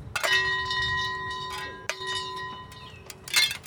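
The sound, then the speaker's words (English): Long silver wind chimes, hung on a cord tied between two trees on the tallest hill in Benton Park, St. Louis, on a spring morning, ring out with clear, sustained tones that hang in the air, struck again in bright clusters, heard outdoors over a low background rumble. “13 Counterpublic participants carry long silver wind chimes up the tallest hill in Benton Park on a recent spring morning.”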